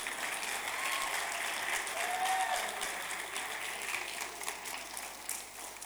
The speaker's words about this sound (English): So please, one more time, let me celebrate the Wonder Woman beside you. Guys, you're stingy with your clap. Please, you can do better.